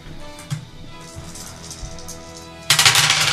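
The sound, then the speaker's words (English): Dice tumble across a glass surface: a few scattered clicks, then a loud, bright rattling clatter bursts out in the final second. No one speaks. “Stop rolling on the glass.”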